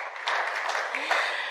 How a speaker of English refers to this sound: Why don't you give him a round of applause as he comes on up?